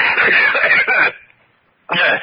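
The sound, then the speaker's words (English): A person with a cold coughs loudly in a long, raspy fit, falls quiet for a moment, then breaks into another harsh burst of coughing. “I have a cold.”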